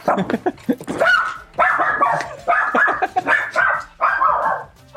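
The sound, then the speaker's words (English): A dog barks repeatedly in quick, insistent bursts, loud, with several sharper yips mixed in and short pauses between volleys. “Oh my God, dog.”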